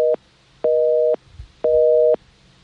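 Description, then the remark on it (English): A telephone busy tone from a dropped call: steady two-pitch beeps pulsing on and off in even half-second bursts, loud and clear with no talking over them. “That might have been his phone. Okay, I think Roger's back up. Go ahead, Roger. Sorry we lost you there.”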